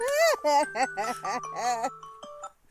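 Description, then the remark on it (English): A phone rings with a melodic ringtone: a quick run of bright chiming notes that ring on and overlap, clear, then trail off into quieter tones. “We're getting a phone call during the middle of... the hot tea segment.”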